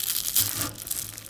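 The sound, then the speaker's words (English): Crisp crackling and crunching, recorded with a phone held close, as flaky baklava phyllo is pierced right down the middle, a dense burst of brittle snaps lasting about a second with no voices over it. “I want to get the crunchy noises.”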